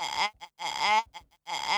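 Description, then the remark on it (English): A straw slurped in three loud, wavering bursts that sound like a sheep bleating, each harmonic-rich and quivering, separated by short squeaky gaps. “It sounds like you're using the straw as a musical instrument.”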